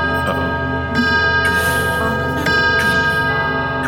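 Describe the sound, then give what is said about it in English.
Several grandfather clocks chime the hour together, 13 strikes, their ringing strikes overlapping into a dense, sustained wash of bell tones, with fresh strikes landing every second or so. “And it starts ringing the hour, and all of a sudden, all the grandfather clocks are ringing the hour.”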